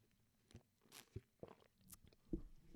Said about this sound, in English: It's coffee break. Take yourself a sip of coffee. I'm not even going to cut this out because I think we need this intentional moment.